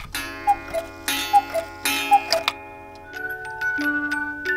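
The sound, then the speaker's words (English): A mechanical clock ticks in a steady, evenly spaced rhythm, clear, with sustained ringing metallic tones underneath and a busier cluster of light clicks toward the end, in a clockmakers' shop in North Wilmington, Massachusetts. No one speaks. “who's going to keep it and all the other timepieces they care for ticking”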